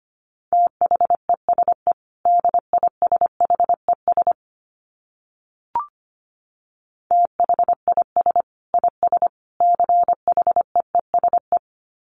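A steady mid-pitched tone keys on and off in rapid Morse code dots and dashes at 25 words per minute, sending two quick runs of characters separated by a short gap with a single click, with no voices.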